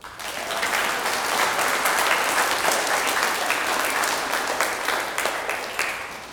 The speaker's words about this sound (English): Thank you. Let's clap for them.